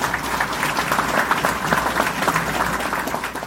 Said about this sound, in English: So I think you should applaud that. I think that's really good.